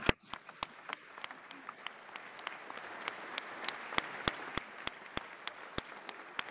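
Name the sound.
audience clapping twice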